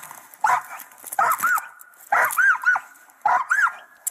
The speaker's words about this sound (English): Okay. I get it. It's kind of a high bark. But what do you picture when you hear that bark? I'm not a dog expert. Like, when I first heard it, I thought the dog was, like, in pain or something.